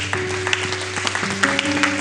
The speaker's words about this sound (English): Look at it. Now you're clapping. Is that a clap in faith?